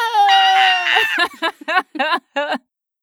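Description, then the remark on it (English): A loud, sustained human scream lasts about a second, then breaks into five short, choppy vocal bursts, before everything falls silent. “So anyone else who can identify with hormonal anxiety, scream with me.”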